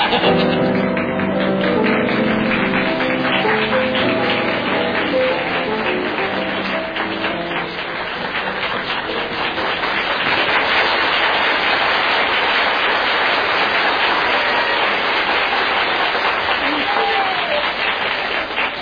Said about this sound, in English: Well, ladies and gentlemen, listening at home, you'll probably wonder why there should be such an enormous round of applause.